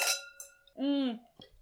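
Wine glasses clink in a toast: a bright glass clink rings out at the start and fades over about half a second, followed by a short spoken exclamation.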